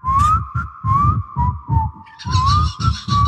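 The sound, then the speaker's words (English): A person whistles loudly close to the microphone, holding a steady tone with slight pitch slides, backed by rhythmic low thumping pulses, like a whistle-and-beatbox combo, with no talking. “It sounds like you're whistling.”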